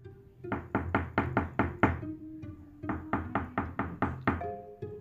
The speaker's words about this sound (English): The wolf knocked on the door.